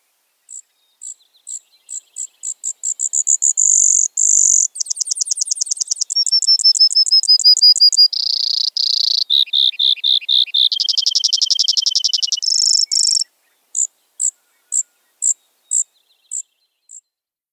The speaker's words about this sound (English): Brewer sparrows' long song are alternating trills, musical or buzzy, and often quite prolonged. Roger Torrey Peterson likened it to a chipping sparrow trying to sing like a canary.